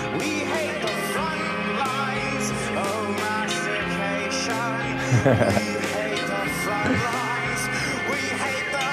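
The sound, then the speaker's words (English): Armenian folk music from a CD plays steadily at full volume, with dense layered instruments carrying a winding melody over a repeating rhythmic pulse and no voices talking over it. “Armenian folk music, says Man Godson”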